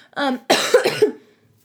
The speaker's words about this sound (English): So where I'm going, that cough was a beautiful segue into where I'm going to go.